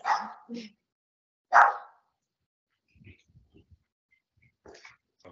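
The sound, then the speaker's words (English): A dog barks twice, loud, with a short gap between the sharp barks, at someone walking by the door, followed by faint, scattered low noises. “So yeah, he was just barking at someone at the door.”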